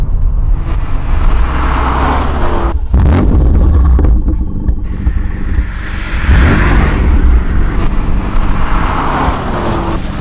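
A car drives along with a loud, steady low engine rumble that surges and swells a few times as the engine revs, with road noise throughout and no talking.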